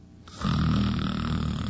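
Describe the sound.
A voice imitates a single long, rasping snore: a loud, low, buzzy rattle that starts after a brief quiet moment and holds steady for over a second.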